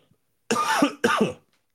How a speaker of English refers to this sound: Again, now that I'm out of something to sip on, of course, I'm having a little coughing attack.